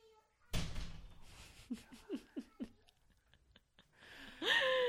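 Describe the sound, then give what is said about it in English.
A door swings shut with a solid thump, followed by a few short vocal sounds and another loud, noisy clatter near the end. “Can you close the door?”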